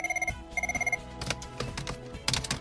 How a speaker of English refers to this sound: What in the world? The phone's ringing. Hang on.